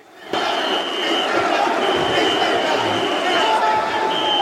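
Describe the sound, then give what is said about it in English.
A large wrestling arena crowd roars loudly and steadily after a sudden start as the wrestler Van Daminator spills out and goes through a table, with a shrill, sustained whistle piercing through the din several times. “Van Daminator, and then he spills out, goes through a table, and the crowd goes bananas.”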